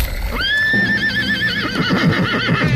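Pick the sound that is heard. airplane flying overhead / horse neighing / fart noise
horse neighing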